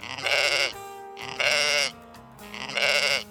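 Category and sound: animal, sheep bleating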